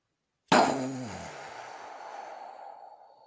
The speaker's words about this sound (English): All right, now you need to play like a little explosion audio clip at this point.